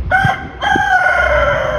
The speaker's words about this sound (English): who would keep a rooster in the Tenderloin?